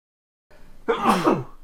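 A single sharp sneeze bursts out, a quick breathy intake followed by a loud, bright explosive release that trails off within a second.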